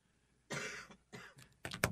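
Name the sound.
cough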